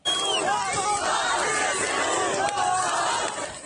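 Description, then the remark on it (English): A large crowd of residents in the city of Kherson, Ukraine, cheers and shouts continuously as a car carrying men in Ukrainian military uniforms makes its way through, a dense, loud wall of voices with rising whoops and yells, sustained throughout without pause. “Residents cheered as a car carrying men in Ukrainian military uniforms made its way through the crowd.”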